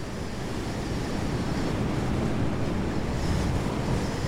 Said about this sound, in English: The wind whips and whirls, twigs take flight, the last of the leaves that have clung on through frost and snow are ripped from their branches and swirl aloft.